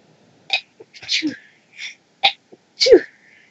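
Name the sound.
sneeze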